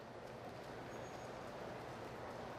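Steady, even rumble of a train at a station, dense low-frequency hum with a faint brief high whine partway through, constant throughout with no voices.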